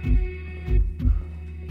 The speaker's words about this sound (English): Oh, hang on. Can you hear that? Well, there's the heartbeat of a giant, all right.